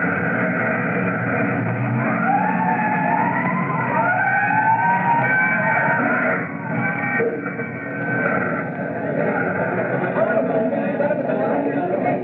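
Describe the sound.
Fire truck sirens wail in long rising and falling sweeps, loud, over a dense rumble of engines and the indistinct voices of a crowd gathering around the fire trucks at a small trash fire in an areaway on Dulcimer Street.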